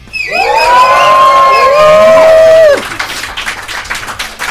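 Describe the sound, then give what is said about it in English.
A live audience at Columbia University in New York City lets out a loud, sustained group roar in imitation of lions. The howling voices hold for over two seconds, slide downward in pitch, then break off into scattered cheering and chatter. “Let's hear you lions roar.”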